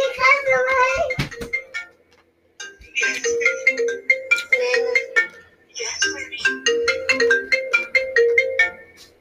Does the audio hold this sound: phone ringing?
yes